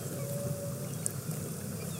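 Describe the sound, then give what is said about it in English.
A faint, steady siren-like tone of a humpback whale feeding call, recorded from a kayak with a microphone pointed toward the ocean, holds for about a second before fading. It sits over a constant low underwater rumble, with no voices. “We heard the feeding call of the humpback whales and then the sound of this congregation of whales erupting through the surface of the water.”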